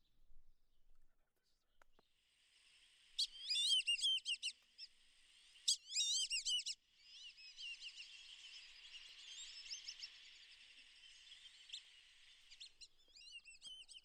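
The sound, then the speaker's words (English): Black-bellied whistling duck calls: bursts of high, squeaky multi-note whistles over a steady wash of thin chatter, with the loudest phrases clustered in the first half and more calls trailing off. “They were kind of tucked away in the reeds, but then the call of the black-bellied duck is this.”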